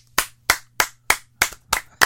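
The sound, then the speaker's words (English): A single pair of hands claps seven times in a steady, even rhythm, each clap sharp, with no voices. “He gets a round of applause.”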